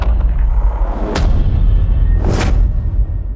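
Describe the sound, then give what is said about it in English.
Heavy booming hits over a deep, sustained rumble, with a sharp impact about a second in and a swelling cymbal-like rush building into a second loud crash. No voices. “There's also the reverse cymbal. And lots of different types of hits.”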